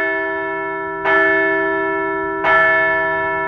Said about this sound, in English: So let's ring the bell.